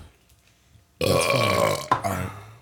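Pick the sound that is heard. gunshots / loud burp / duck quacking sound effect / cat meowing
loud burp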